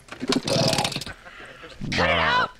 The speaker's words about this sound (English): Now, would you look at this cute little motorcycle? That's mine. Don't look like much. Let's see how it sounds.